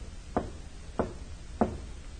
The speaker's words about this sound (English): A man steps out and walks to a side door of one of the buildings. He knocks, pauses, then knocks again.